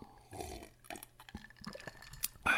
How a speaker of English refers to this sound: Hold on, I got to take a drink of water.